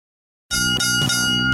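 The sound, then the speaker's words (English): A bright bell is struck three times in quick succession to mark round three, each ring overlapping the last so the tones pile into a loud, shimmering sustain. No one speaks. “Three bells, round three.”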